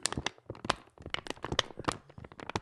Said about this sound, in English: This is half full water bottle. Did you hear that?